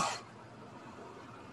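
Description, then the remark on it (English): A person imitates a single cough: one short, sharp, breathy burst right at the start, fairly loud, followed by quiet background hiss. “He just lets out that one cough.”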